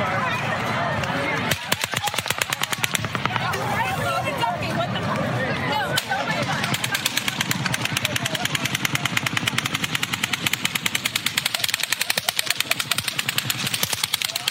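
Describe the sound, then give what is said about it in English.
Rapid, sustained bursts of gunfire crack out in dense strings, some shots sounding deeper and muffled while others snap and crackle, with voices faintly audible beneath the loud shooting. “One sounds a little bit deeper. And one's crackling.”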